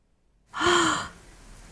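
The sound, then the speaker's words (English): A single short, breathy gasp with a faint voiced edge, starting abruptly and trailing off within about half a second, fairly loud, with no talking around it. “Gasp.”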